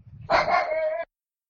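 A dog lets out one loud, drawn-out bark, lasting under a second with a strained, tonal edge, then silence follows. No one speaks.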